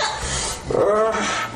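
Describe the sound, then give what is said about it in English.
A woman's voice makes a short, strained bark-like yelp amid raspy, panting noise, fairly loud, imitating a dog with Tourette's-like barking noises. “I mean, she's making all kinds of barking noise, like Tourette's noises.”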